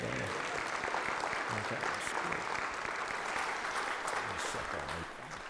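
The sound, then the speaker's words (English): A church audience breaks into sustained, dense applause to rejoice in a woman's decision to follow the Lord in believer's baptism, many hands clapping steadily at an even loudness for several seconds before easing off slightly at the end, with faint voices mixed underneath. “And so if you rejoice in her decision, let it be known by a round of applause and an amen.”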